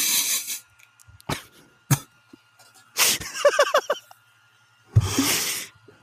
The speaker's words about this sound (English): Did I make you cough? It wasn't really a cough. It was like a thutter.